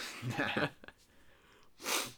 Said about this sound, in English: Ugh, I'm sniffling. Getting the allergies or the coronavirus. Sniffling, yeah.